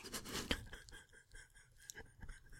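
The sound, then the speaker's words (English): A dry scraping and rustling as the sliding top of a pure cedar cigar box, filled with slips of paper, is slid open along its grooves, with a sharp click partway through and softer shuffling afterward. “It's pure cedar, and it's got a sliding top on it. It doesn't Flor open.”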